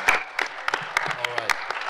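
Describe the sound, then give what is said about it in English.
A live audience in Oshkosh applauds the guests and their wives in the front row: many hands clapping in a steady, dense patter that holds at an even, fairly loud level throughout, with a faint voice murmuring underneath. “A round of applause for them, too.”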